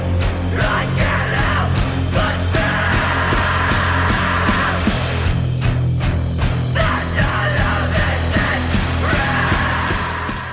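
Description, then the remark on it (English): Harsh screamed vocals roar over dense, pounding heavy music with relentless drums and distorted guitars, the shrieks coming in long sustained bursts that dominate the loud, saturated mix. “The mission to lose me begins at a minute 30 when he just goes into the nothing screams.”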